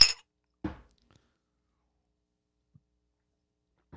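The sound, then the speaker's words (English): Shot glasses clink together once in a bright, ringing toast, followed moments later by a duller knock, then near silence with a faint tap near the end. No voices. “Let's literally customers. Take the shot. Yeah. Cheers! Cheers!”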